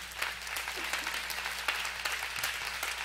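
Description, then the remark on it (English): People applaud a team, clapping steadily, a dense patter of many hands without pauses, with a low constant hum underneath and no voices rising above it. “But our team did such a wonderful job, and they really deserve a big round of applause. Can we give them one?”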